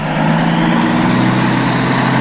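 A truck engine idles steadily at the Bankstown Showgrounds, where the truck faces off with a smart car, with a low, constant rumble and a faint hum, fairly loud, with no talking over it.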